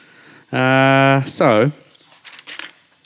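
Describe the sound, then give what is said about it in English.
A short, sustained vocal sound and a rising-falling voiced note come first, then soft, irregular rustling and crinkling of paper sheets follows for about a second as a speaker handles paper notes instead of an iPad. “It's a bit more involved, isn't it? Paper.”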